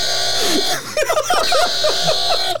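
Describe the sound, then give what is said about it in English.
A voice makes a loud, harsh buzzing sound like a quiz buzzer, held for about two and a half seconds with a raspy, wavering pitch before cutting off abruptly. “That's my buzzer tone.”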